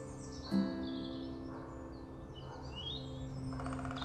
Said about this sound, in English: I've just come back, I've just stopped, and I could hear a woodpecker. Don't know if you can hear it in the distance.